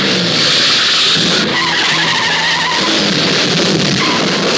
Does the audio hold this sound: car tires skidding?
yes